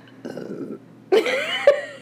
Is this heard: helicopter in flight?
no